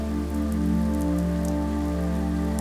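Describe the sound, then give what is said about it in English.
Light rain sprinkles on the ground in the mountains as a thunderstorm begins and the wind picks up, with a few scattered, crisp drop taps standing out over a steady, low rumbling wash of background noise. No voices. “The wind is blowing a bit more, and light sprinkles of rain occasionally tap on the ground.”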